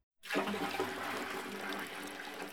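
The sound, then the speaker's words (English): A steady, loud rush of water starts abruptly after a brief silence and keeps gushing without pause as the coldest water from a stream is poured in to fill a bath. “Fill the bath with the coldest water you can find from the stream, the one with the gudgeons in it.”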